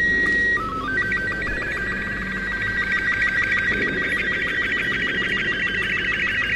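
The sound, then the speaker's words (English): The AOL sign-off sound, part of a much longer sound, played through a modem from a radio found in one of a character's dens in a game: warbling, buzzy electronic tones that rise and hold in a steady, screechy drone for several seconds, loud and continuous, with no voices. “Yeah, part of a much longer rockadoodle sound. Being played through a modem.”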